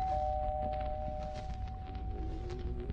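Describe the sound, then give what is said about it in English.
A doorbell, rung by a visitor at 7:13, buzzes in one long, steady, unbroken tone for several seconds, moderately loud over a low background rumble and faint shuffling noises. “Ring the bell”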